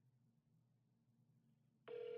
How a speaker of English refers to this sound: Let's see. It's ringing.